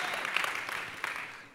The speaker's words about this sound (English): Come on, Zoe, clap like you believe it tonight.